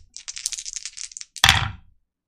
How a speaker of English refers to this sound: Damn it. That's a miss. I rolled a 8 and a 9 on the challenge dice. 3 on the action. Plus 2 makes 5, which is not high enough.